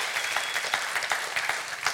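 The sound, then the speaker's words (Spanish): A church audience claps in praise of the Lord, a dense wash of many hands with sharp bursts peaking through the sustained applause, no voices standing out. “Tú le puedes dar un aplauso al Señor por ello.”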